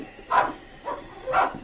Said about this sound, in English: he was greeted by a sudden series of barks from inside the cabin